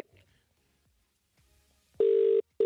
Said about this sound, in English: Okay, I'm ringing Paddy.